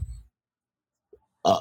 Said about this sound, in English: Sorry, still burping. That's what happens when you have a Diet Coke but prior to recording. Another one.